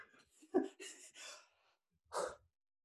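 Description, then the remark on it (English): Heavy, breathy exhalations from a man: a cluster of three or four rushed, gasping breaths, a short pause, then one more loud sighing breath. No one speaks. “He's breathing heavily.”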